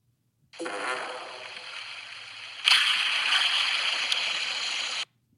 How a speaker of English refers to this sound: So you're going to hear a fart and then resist laughing and listen in for a ghost replying to the fart.